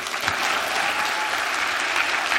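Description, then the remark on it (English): An audience at Cornerstone applauds steadily to welcome a speaker, a dense, even wash of many hands clapping at a constant loud level with no pauses and no voices standing out. “And so let's give him a great Cornerstone welcome. Can we do that?”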